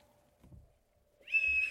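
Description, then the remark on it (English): After a quiet stretch with faint low rumbling, a slide whistle swoops quickly upward and holds a loud, steady, high-pitched tone to the end. “You can do all the slide whistle you want.”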